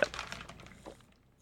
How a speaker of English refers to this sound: I just realized this water receptacle that I will be drinking out of during this podcast is probably loud. The worst option for a audio medium. Just give everybody a second on this. Here you go.